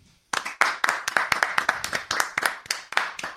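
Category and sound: crowd, clapping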